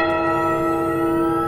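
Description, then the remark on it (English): A clock chime rings out in a single sustained, resonant tone, its bright metallic overtones humming steadily and loudly with no voices present. “And it's in that moment that Isla hears the ominous clock sound again.”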